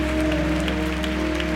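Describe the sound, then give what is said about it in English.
Audience applause, a steady wash of many hands clapping together, with sustained musical tones from a keyboard or organ holding underneath throughout. “Give them a big hand.”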